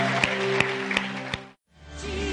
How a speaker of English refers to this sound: Hey, come on, let's give God some praise. Come on, can we do that? Let's give him some clap.